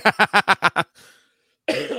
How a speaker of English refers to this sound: That's calling it like when you call into work sick, you always got to throw that one cough in there. Yeah, I'm feeling sick.